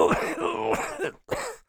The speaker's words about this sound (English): A coughing jag cut her sentence short.